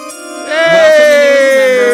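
A draft announcement chime rings out: a bright, sustained electronic tone with a buzzy, harmonic-rich timbre that swells louder after a brief quieter start and then holds steady, with its pitch easing slightly downward.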